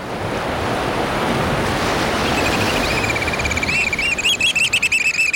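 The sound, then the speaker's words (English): Waves break against a rocky shoreline on the Pacific coast in a steady roar of surf, with shrill, repeated piping calls of black oystercatchers rising over the water in the last few seconds. “Crouching on a rocky shoreline on the Pacific coast, hearing the piping call of the black oyster catcher, a stocky blackbird with bright red eyes and a stout orange-red bill, perfectly suited for jabbing limpets and mussels.”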